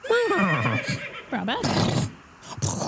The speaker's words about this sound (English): you both hear what appears to be, or what you think is like the sound of a horse whinnying in the distance around a corner.